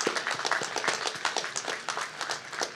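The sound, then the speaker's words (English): At a class of 2023 commencement ceremony, a crowd applauds the faculty and staff, with many overlapping hand claps forming a dense, continuous crackle of moderate loudness. No voices stand out above the clapping. “Before we conclude, I just want to applaud the faculty and staff who have worked tirelessly to prepare the next generation of leaders.”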